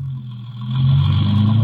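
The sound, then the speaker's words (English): A car engine hums low and steady, then swells louder as the car pulls away into traffic, its rumble building into a sustained drone with faint road noise on top. No one speaks. “So I got in, and the car nosed its bulk into traffic.”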